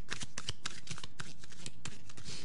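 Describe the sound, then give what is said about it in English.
A deck of tarot cards being shuffled for a tarot reading, a quick run of crisp, papery riffles and slaps in an uneven rhythm, with no one talking. “So we're going to shuffle the deck and see what pops out.”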